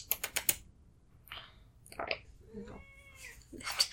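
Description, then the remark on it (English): A single drawn-out cat meow, moderately loud, follows a quick run of keyboard-like clicks at the start, with scattered soft rustles in between. “Get back under there, cat.”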